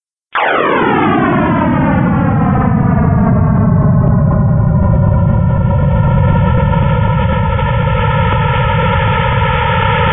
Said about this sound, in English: So here's his sound. So remember, the first million years of the universe.